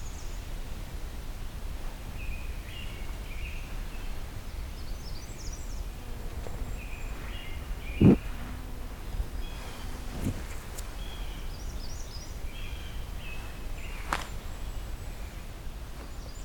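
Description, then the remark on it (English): A ruby-crowned kinglet gives short, high chittering calls in scattered bursts, faint over a steady outdoor hiss, with a couple of sharp clicks. “Actually, I think it's another ruby-crowned kinglet.”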